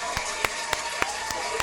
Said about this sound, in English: Give a round listening. Of applause for yourself, man. Yes. Clap for the people.